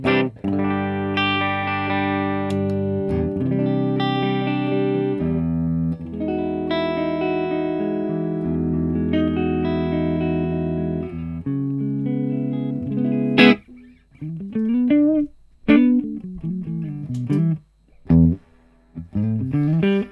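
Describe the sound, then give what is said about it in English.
Electric guitar played through the clean channel of an amp with a proper spring reverb tank, captured via a Boss Gigcaster 8, with gain, EQs and presence all at noon and a long reverb: long, sustained chords ring for several seconds, then give way to short, choppy stabs, each trailing off in a wet, splashy tail. “Reverb. Is it it's a proper spring tank in there? Yeah, it's a sprung tank.”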